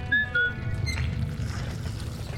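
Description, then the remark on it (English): A steady low mechanical rumble and grinding churns under a watery, rippling wash as the liquid surface of the Ruby ripples with something mechanical grinding beneath it, with a few brief high tonal glints at the start. No voices. “The Ruby rippled. Underneath its liquid surface, I heard something mechanical grind.”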